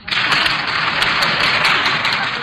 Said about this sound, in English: You may applaud now.